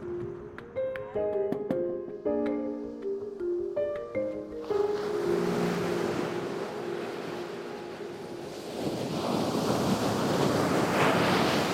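A few seconds of gentle plucked melodic notes give way to the steady roar of waves breaking on an undeveloped beach at Canaveral National Seashore, the surf swelling louder toward the end with a breezy rush and no voices.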